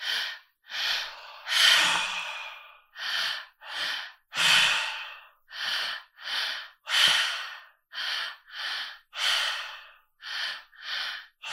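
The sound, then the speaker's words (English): Audible open-mouth breathing in a three-part breath practice, belly, then chest, then out, in a steady repeating pattern: two quick sharp inhales followed by a longer, heavier exhale, cycling over and over with no talking. “Now for today's breath practice, this will actually be open mouth. So it's three parts, first your belly, then your chest and out.”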